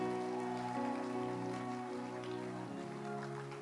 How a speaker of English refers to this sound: Encourage him as he comes. Let your hand clap be louder. Let your hand clap be louder.